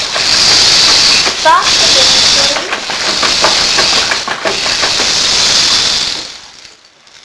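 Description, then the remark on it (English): Heavy rain pours down early in the morning in a steady, loud hiss, with scattered sharp patters and drips running through it, before it thins out and fades in the last second. “He looked out of the window and saw that it was raining really hard.”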